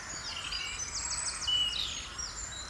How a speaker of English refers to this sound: There's crows mixed with herons, mixed with wrens, mixed with cranes.